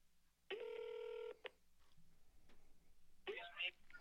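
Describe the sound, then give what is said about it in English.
Phone system tones during a call as a specialist is brought onto the line: a steady electronic beep lasting under a second, a brief second blip, then after a pause a louder, harsher burst of line noise and tones. “You may hear some phone system prompts while I'm bringing them online, but just remain on the line, okay?”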